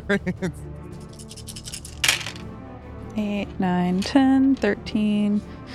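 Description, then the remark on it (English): A quick burst of eight six-sided dice clattering together as they are rolled, like a handful of dice tumbling onto a table, then a lone click, followed by a sustained voice humming or vocalizing. “8d6. Just piling dice in there.”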